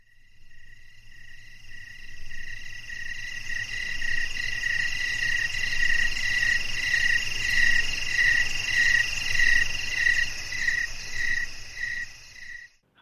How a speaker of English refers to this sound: That was a joke. Anyway, the crickets got their weekly outing there.